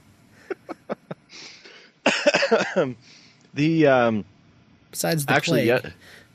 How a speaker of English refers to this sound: Besides the plague, you're still coughing. I noticed. It's just a tickle the back of the throat. It's not a plague type cough.